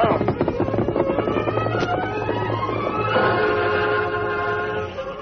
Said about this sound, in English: But he came to life when the westbound freight train rolled through town. Well, there goes old 97.